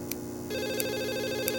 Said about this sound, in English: The phone rang again and Owl Man picked it up.